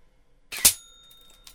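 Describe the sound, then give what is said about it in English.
A small explosive dart fired from a blowpipe strikes a metal bell with a sharp clack, and the bell rings out in a clear, fading tone for about a second. A faint tap follows. No one speaks. “I've got to hit the bell first with a blowpipe.”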